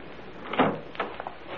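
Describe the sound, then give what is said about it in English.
A front door opening or closing, with a soft thud followed by a couple of lighter clicks and rattles, with no voices. “You shouldn't leave the front door open like that.”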